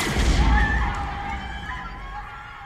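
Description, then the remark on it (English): A single heavy warning gunshot, fired to disperse a crowd, booms out with a deep, rumbling body, then fades slowly into a long echoing tail while faint voices murmur underneath. “It was just a warning shot, just enough to disperse the crowd.”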